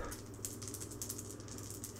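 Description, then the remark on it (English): Dice rattle and clatter in a quick, uneven run of faint, bright clicks lasting a couple of seconds, with no voices over them. “I would roll the dice again.”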